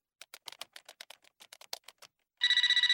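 A quick run of sharp clicks, like keys being pressed, gives way to a loud electronic telephone ring with a rapid warbling pulse before a voicemail answers. No one speaks.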